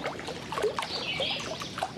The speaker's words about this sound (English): The waves sound slightly different here, but just as unique.